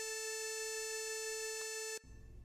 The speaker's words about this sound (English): Anyway, he decided to alter it with an alarm to alert the user with a sound. No, not that kind of sound, an audio tone, like an alarm.